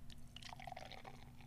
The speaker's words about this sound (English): That's a real sound too. We're not adding that in. That's really a real pour.